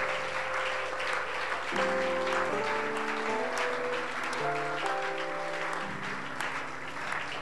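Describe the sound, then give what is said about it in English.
Steady, dense applause from an audience at an evening gathering fills the whole stretch, with sustained keyboard chords shifting underneath. Nobody speaks over the clapping. “Oh, put your hands together.”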